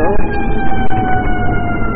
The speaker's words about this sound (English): So here's the siren. That sound has distance more than what I think's hearing it.